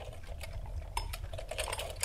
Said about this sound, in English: Do I just wind the alarm? Do I have to do something in the middle? You just wind it. Okay. Like a lot? Yeah. Yeah, I think so.